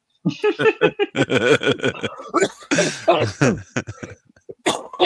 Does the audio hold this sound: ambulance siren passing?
no